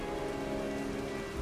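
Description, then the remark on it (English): Steady rain falls without a break outside a house's front door, a dense, even patter of drops striking a surface with a soft low rumble underneath, and no voices. “You don't hear anything behind the door. Just the rain.”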